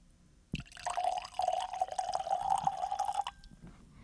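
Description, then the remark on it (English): Beer pours into a glass in one steady, generous stream lasting about three seconds, with a bubbling, slightly rising tone, then stops abruptly. No one speaks. “That's a healthy pour right there.”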